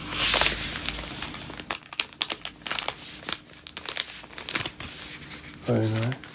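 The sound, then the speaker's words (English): Loud crinkling and rustling of wrapping paper in irregular bursts as a present, a record, is unwrapped, opening with a sharp tearing rip, followed by a brief voiced sound near the end. “And the actual present is a record. Nice paper.”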